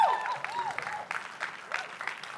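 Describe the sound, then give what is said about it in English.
An audience at Connect Church claps and cheers together after the announcement that the church will move to two Sunday morning services; steady applause with a few rising whoops over it, moderately loud throughout the short burst. “I trust you're cheering because that means twice as many people will discover a father who loves them.”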